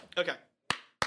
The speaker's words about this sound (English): I'm clapping my hands together.